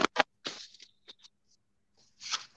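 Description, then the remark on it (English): A piece of paper with writing on it being handled and rustled: two quick crisp snaps, a longer crinkling swish, a few light taps, then another soft rustling burst after a pause, with no one talking. “This is a piece of paper with writing on it.”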